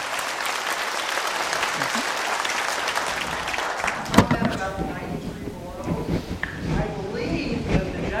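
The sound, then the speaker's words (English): A crowd claps for scientists at a talk, steady, dense, sustained applause for about four seconds, then it thins out and a voice starts talking over the last scattered claps. “Applause for all of our scientists.”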